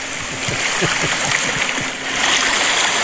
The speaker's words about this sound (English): It's supposed to be beach waves. that was much more like river than beach waves. I was picturing trout.